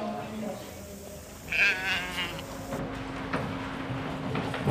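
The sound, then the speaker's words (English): Heavily fleeced sheep waiting their turn in the sheepyards at a shearing competition: one lets out a loud, quavering bleat in the middle, with fainter bleats and shuffling around it, all over a steady low engine-like hum. “Just beyond the fleece judging room are the sheepyards.”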